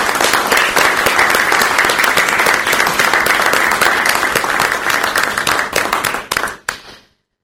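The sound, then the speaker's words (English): A large audience applauds steadily for veterans, thanking them for their service, dense overlapping claps filling the room at full volume for several seconds before quickly tapering off and stopping. “And if you could all join me in a round of applause, thanking them for their service.”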